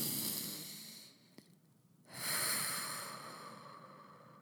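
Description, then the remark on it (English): Deep breathing in through the nose: a long, airy breath, a brief quiet pause, then another long breath that starts strong and slowly fades. No talking. “On a really basic level, some of the most effective and free things that you can do is by making sure you take 5-6 deep breaths before you have a meal. So breathing in through your nose if you can.”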